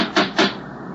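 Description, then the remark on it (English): Two heavy metallic knocks from a huge brass door knocker strike the front door of a house in the New England countryside during a thunderstorm, in quick succession and fairly loud, then faint ambience lingers with no voices. “There was no bell, but there was a huge brass knocker.”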